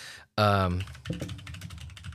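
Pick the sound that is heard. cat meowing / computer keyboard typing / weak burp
computer keyboard typing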